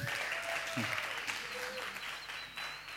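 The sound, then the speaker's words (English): An audience applauds steadily for about three seconds, a dense wash of many hands clapping at an even loudness, with faint voices and a brief whistle-like tone mixed into the crowd. “Round of applause.”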